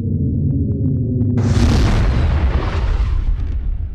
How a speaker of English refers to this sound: Keith fires the engines, and the freighter lurches toward space. It takes only a couple minutes for the Beetle to pass through the magnetic shields and exit Venus's atmosphere.